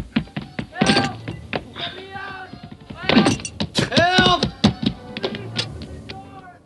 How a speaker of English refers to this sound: I'm going to have to break the door down. You make as much noise as you can.